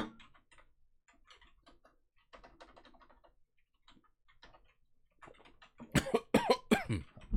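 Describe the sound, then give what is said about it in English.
Soft scattered clicks and taps give way to a loud coughing fit near the end, several harsh coughs in rapid succession. “I started coughing because the king started coming out when we said kingdom, okay?”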